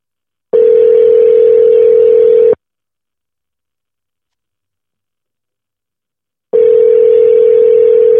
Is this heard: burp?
no